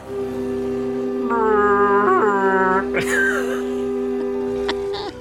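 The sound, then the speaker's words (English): A person vocally imitates a conch shell blast with a long, steady, low humming drone. It wavers and rises briefly midway, then holds for about five seconds at a fairly loud level. “And he takes a big lung full of breath and blows into the conch. What does it sound like”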